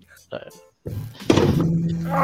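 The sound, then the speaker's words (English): A whole fresh glass of country tea gets knocked over: a couple of sharp, dull thunks and a clattering rush, then a voice making wordless sounds over the lingering noise. “My god, I just knocked over my whole fresh glass of country tea.”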